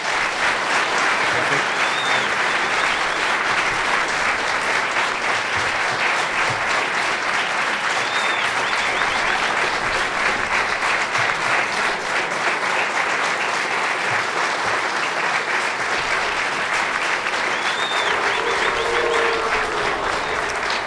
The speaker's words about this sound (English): Well, that concludes the first of the 2021 International Brotherhood of Teamsters presidential debates. Let's give the two candidates a round of applause.